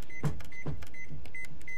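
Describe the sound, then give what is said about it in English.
An oven control panel beeps five times in a steady rhythm as the oven is set to 400 degrees. Each short, high-pitched tone is paired with a soft button-press click, at moderate volume with no talking. “Let me beep it down a couple notches.”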